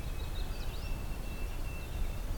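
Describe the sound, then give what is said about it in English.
A white-throated sparrow's thin, pure whistled notes sound faintly in the background, held steady, over a low outdoor rumble with a few soft chirps from other birds. “White-throated sparrow in the background.”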